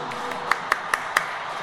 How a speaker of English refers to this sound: Let's give a round of applause to Maurice and Frenzel. That was awesome.